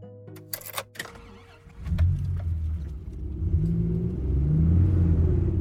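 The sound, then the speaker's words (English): A few sharp clicks and thumps, like a car door and ignition, then an engine starts and settles into a steady, growing rumble as the car pulls away from Sheboygan, heading toward Milwaukee, Wisconsin, along Route 43, with no talking. “We'll hop back into our car and make our way towards Milwaukee, Wisconsin, along Route 43.”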